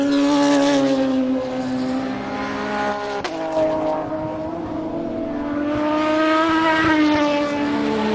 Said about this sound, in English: Those two were an Aston followed by a Peugeot. I'm standing perhaps no more than 40 foot away from the cars, just on the apex of the last turn. And I've had to set the recording level on this machine to ultra low.